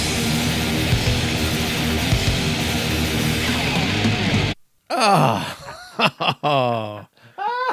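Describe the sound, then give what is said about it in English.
A dense wall of distorted heavy metal noise stops abruptly, then a piercing vocal scream cuts in, loud and raw, its pitch swooping and sliding in several sharp bursts. “Listen to the scream. It's metal classic.”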